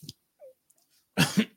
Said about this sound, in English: Sorry, I did that cough without muting myself. I usually am pretty good about that.